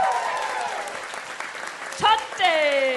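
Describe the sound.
An audience claps steadily for the head of the show's network, who is sitting in the front row, while several voices whoop and cheer over it, with rising and falling shouts and a louder burst of cheering near the end.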